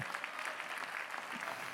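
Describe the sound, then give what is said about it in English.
An audience claps in praise to God, a steady wash of many overlapping hand claps with no distinct rhythm, sustained at an even loudness for the whole stretch. “If you desire to be used by God in any shape, form, or fashion, would you just give him a good hand clap of praise today?”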